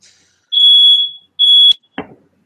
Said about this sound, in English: That would be a fire alarm.